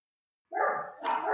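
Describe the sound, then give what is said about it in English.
After a brief silence, a dog lets out two loud barks in quick succession, the second following right on the heels of the first, with no talking. “What the dog doing?”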